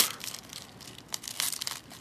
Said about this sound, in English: With a nasty crunch, Charlotte crushes Chloe's ribcage.